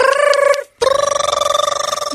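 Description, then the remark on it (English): A telephone rings loudly: a bright, rapidly trilling electronic tone sounds in two bursts separated by a brief pause, with no talking. “I got a phone call.”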